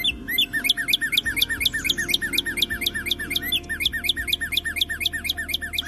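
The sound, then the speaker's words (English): A dense chorus of high, chirping bird calls repeats rapidly and steadily, several birds overlapping in a busy rhythmic twitter over a low background rumble, clear, with no voices. “You might hear their calls out your window or on a walk.”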